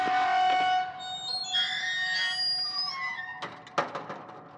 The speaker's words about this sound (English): He reached out a hand, the gates creaking open as the rusty hinges sent their warning.